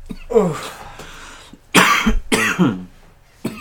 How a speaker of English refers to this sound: Just started out with a cough. An endless one.